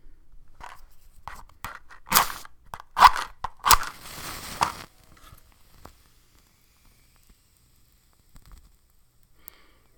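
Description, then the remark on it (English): Dried yerba santa burning for a smoke cleansing, with a crackle of sharp, dry pops and snaps clustered in the first half, then thinning to a few faint, scattered ticks in near silence. “This stuff doesn't crackle near as much as rosemary, so it's not as good ASMR, I guess.”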